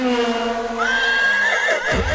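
A horse whinnies loudly, a single drawn-out neigh that rises high, wavers, then breaks into a shaky, descending flutter at the end.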